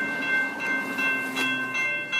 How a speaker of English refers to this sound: Oh, we're going to pause because the bells are ringing, so it's going to make it a little loud.